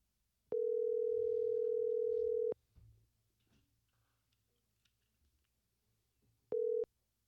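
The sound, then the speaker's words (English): A steady, loud telephone dial tone hums for about two seconds as a phone call is placed, cuts off into near silence with faint background rustle, then returns briefly near the end. “I'll get her on the phone now.”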